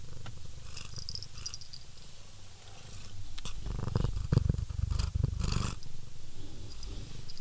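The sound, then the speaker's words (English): A pet cat purrs steadily, a low continuous rumble that swells louder in the middle, with a few soft rustles and clicks over it and no one talking. “This has been a special guest appearance of Cat.”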